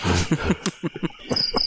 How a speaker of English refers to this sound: If we all be quiet, you can hear the crickets. We can. Beautiful out here.